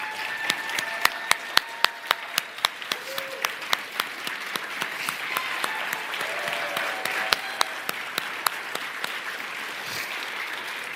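Steady applause from an audience fills the whole stretch, a dense patter of many hands clapping at an even level, with a few sharper claps popping out above the wash.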